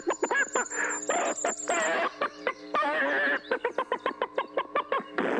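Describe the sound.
A man's voice imitates a hen laying an egg, with drawn-out squawking cackles followed by a quick, rhythmic run of short clucks, loud.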